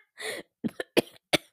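A short raspy clearing of the throat, followed by three sharp coughs spaced evenly apart, each one a quick explosive burst with no talking around them.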